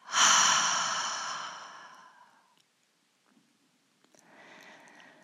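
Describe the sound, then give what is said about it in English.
In a breathing exercise, a strong, breathy exhale through the mouth releases a held breath after tensing the body and fades over a couple of seconds, then after a short pause a second, softer exhale follows, a double exhale with no talking. “And release with a double exhale through the mouth.”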